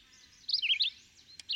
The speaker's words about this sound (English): The red-eyed vireo, whose sweet soliloquy is one of the most constant and cheerful sounds in our woods and groves, is perhaps the most noticeable and abundant species.